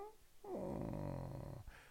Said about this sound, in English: To purr like that, that sounds very peculiar.